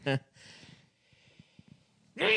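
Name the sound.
sneeze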